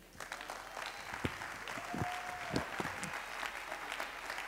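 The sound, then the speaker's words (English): An audience claps its hands to the Lord to thank him for a word, a dense, steady wash of many hands clapping with a few sharper claps standing out. A brief sustained tone, like a held note or whistle, rises over it midway. “Come on, can we clap our hands to the Lord right now and thank him for that word?”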